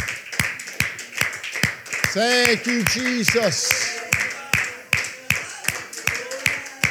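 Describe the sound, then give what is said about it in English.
An audience claps hands in praise to the Lord during a worship service, a steady, rhythmic beat that runs through the whole stretch, with a man's voice briefly calling out over the clapping partway through. “Before you are seated, amen, why don't you give the Lord a hand clap of praise?”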